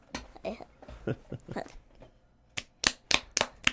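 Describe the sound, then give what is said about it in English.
A quick run of five sharp, fleshy smacks, a hand slapping a belly in a loose rhythm, loud and crisp. Softer muffled mouth-like sounds come first. “And that was the slapping of the belly.”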